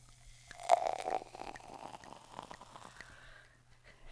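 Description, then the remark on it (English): A fizzy drink is poured into a glass with a brief splashing onset, then the bubbles crackle and pop softly and steadily for a few seconds over a low background hum. “Wait, can you hear just the bubbles popping?”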